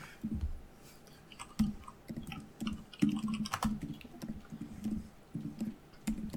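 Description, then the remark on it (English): Irregular tapping and clicking of keys being typed on a keyboard, a steady run of small clacks with uneven spacing and no voices, as someone types to look up Keoghtom's ointment from Dungeons & Dragons. “Typing with one Kyotam's hand.”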